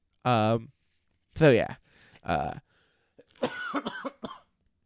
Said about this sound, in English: when I can make it through a full episode without coughing up a lung on mic, I will do the Darkhold again.